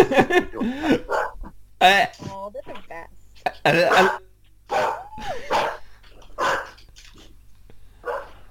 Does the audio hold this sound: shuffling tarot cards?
no